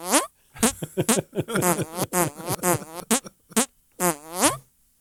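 A rapid string of loud, close fart noises, rising and falling in pitch with the choppy rhythm of someone talking, with short pauses between bursts.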